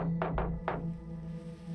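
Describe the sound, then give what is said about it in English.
Three firm knocks on a door, the first two close together and the third after a short pause, over a steady low electrical hum with no voices. “I whispered as the asshole knocked before he went into the infamous Texas Chainsaw House.”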